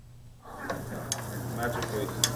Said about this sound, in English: The delicious scent of frying onions hits the air. Fish is added to the pan and simmered high to thicken the sauce.